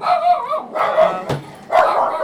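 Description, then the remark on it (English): Dogs bark and yelp in three drawn-out, whiny bursts, fairly loud, with a short sharp click between them and no one talking. “Hey, there they are. I'll let them lick my feet. Yeah. Dogs are on point.”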